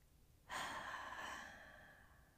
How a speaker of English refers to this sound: So if you can, close your eyes. Take a deep breath in through your nose and out through your mouth.